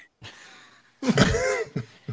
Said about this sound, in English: bless you.